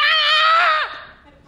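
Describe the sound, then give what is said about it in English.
A woman in an elevator gives a shrill, sustained shriek that holds at a high, piercing pitch for nearly a second, then drops away sharply into a brief breathy tail. It is loud and alone, with no talking. “She shrieked again.”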